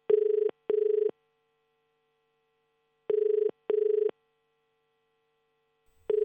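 A telephone rings in the familiar double-pulse pattern, two short buzzy bursts, a pause, then two more, with a third ring starting as it ends. It is clear and steady, with no voices.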